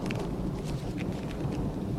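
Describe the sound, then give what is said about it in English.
A stormy downpour out at sea: dense, steady rain hissing with scattered drop splashes over a deep, continuous rumble like rolling thunder, loud throughout, with no voices. “Oh, great. A storm out at sea.”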